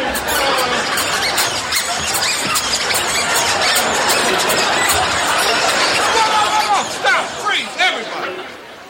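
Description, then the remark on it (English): Several pairs of shoes squeak loudly and continuously, overlapping into a dense, shrill chorus that thins out near the end to a few separate squeaks, with some crowd noise underneath. “Mine are squeaking, too, Cliff.”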